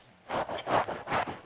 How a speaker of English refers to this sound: What the heck is going on? someone doing some sanding. Hyperventilating? Yes. Oops, sorry. That was me. I stood up for a second.